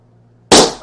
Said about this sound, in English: You know, can we roll like one of the clips of the cannon going off right here? Just a single clip. Just one of them. Maybe one of a balloon and one of a cannon shot. Throw that in there.